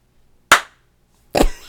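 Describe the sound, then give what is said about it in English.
Two sharp, loud, crisp hand claps marking the start of a recording take, spaced just under a second apart with brief ringing decay after each and quiet between them; no one speaks. “You got to do me a clap.”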